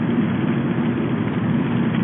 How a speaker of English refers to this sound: Car, road noise. You hear that? There's wetness under the tires.